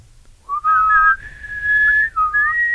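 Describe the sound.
A person whistles a short melody, clear and fairly loud, gliding between sustained notes with a brief break before the tune resumes at a higher pitch.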